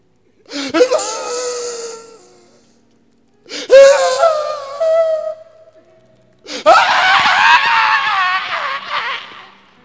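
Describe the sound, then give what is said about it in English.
A person cries out and screams in three loud bursts separated by short pauses, the last scream longer, harsher and more strained than the first two. “Why are you shouting?”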